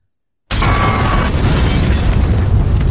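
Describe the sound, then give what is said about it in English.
After a half-second of silence, a bomb explosion from the film Batman v Superman, a bomb hidden in a man's chair, erupts abruptly into a loud, sustained roar with heavy low rumble that keeps going without fading. No voices are heard. “This man has a bomb in his chair!”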